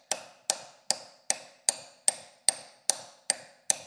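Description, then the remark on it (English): A hammer taps steadily to start driving something in, about ten sharp metallic strikes evenly spaced roughly twice per second, each with a bright ringing attack and quick decay, with no talking. “Bigger hammer. Anybody got a bigger hammer out in the garage or in your car?”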